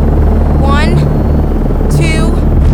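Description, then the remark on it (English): A loud, steady helicopter rotor roar fills the whole clip, with two brief raised voices or shouts cutting through the din. “I watched from the helicopter as Cyrus rescued you, just like you'd hoped.”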